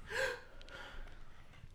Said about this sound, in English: Gasp.